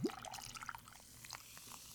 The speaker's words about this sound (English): Every time you pour that, it sounds like a sound effect. But I'm like watching you pour this. It's pretty incredible.